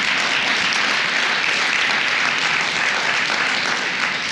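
audience clapping

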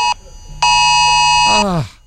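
phone emergency alert tone

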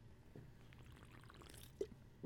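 drinking water

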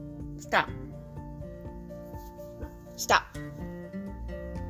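dogs barking

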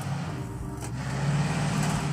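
truck passing by

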